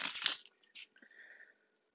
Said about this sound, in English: Speaking of, I am shuffling the tried and true Tarot Mucha. I cannot guarantee you'll hear me shuffling the whole duration of this reading, but based off of faith, we will go from here.